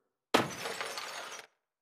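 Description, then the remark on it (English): A small ceramic ballerina figurine, hit by tossed keys, shatters in one sudden, loud crash, followed by about a second of bright, crackling clatter from scattering fragments before it cuts off abruptly. No voices. “On edge so much that when I walked through the door, instead of placing my keys on the shelf by the door, I tossed my keys, hitting a small ceramic ballerina.”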